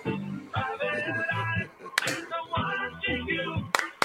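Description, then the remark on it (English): A few sharp, isolated hand claps ring out at irregular intervals over a steady melodic, voice-like background, each clap loud with a quick snap. “See, it's all right now, but towards the end, all you do is clap like every like 5 all right, seconds.”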